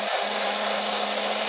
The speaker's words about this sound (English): When a plane flies overhead.